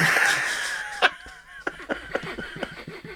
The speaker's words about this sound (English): If you hear sniffing and coughing, please don't alert the authorities.